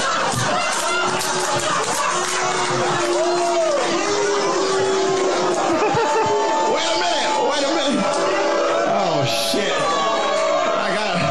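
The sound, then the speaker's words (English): A loud crowd of friends and colleagues boos and jeers a comedian off stage continuously, long sustained boos rising and falling in pitch over dense chatter, yells and whoops for the whole stretch. “Friends and colleagues, by the way, that are booing him off stage.”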